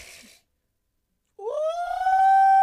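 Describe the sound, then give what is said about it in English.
A man howls like a wolf, his voice swooping upward into a loud, sustained wail that holds steady, after a short burst of noise and a moment of silence. “This nigga howling.”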